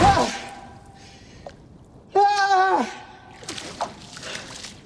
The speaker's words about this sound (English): just a little bit of the water moving as Will is brushing the water at his feet